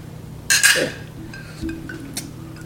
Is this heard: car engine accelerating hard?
no